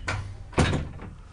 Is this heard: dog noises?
no